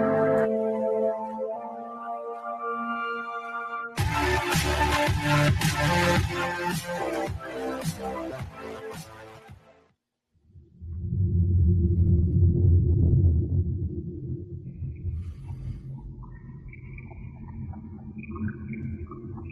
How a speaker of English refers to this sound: Helicopter sounds. I wonder if it is like interference from helicopter radios. We are both in New York City.